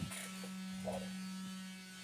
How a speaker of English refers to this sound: Did you want to hear the notification noise?